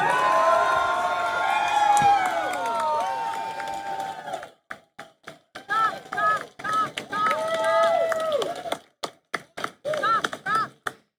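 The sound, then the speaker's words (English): A rally crowd cheers for Donald Trump and shouts, many overlapping voices whooping loudly for several seconds, then the roar breaks into choppy, stop-start bursts of yells and calls. “So she panned the whole crowd, and you could see the excitement for Donald Trump.”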